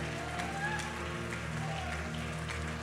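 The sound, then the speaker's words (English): An audience claps continuously while scattered voices shout praise to the Lord over a steady, humming instrumental backdrop; the dense, even wash of sound holds from start to finish. “One more time, why don't you clap your hands and give the Lord a shout of praise.”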